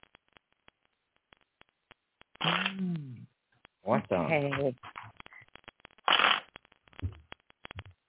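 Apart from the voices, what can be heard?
shuffling tarot cards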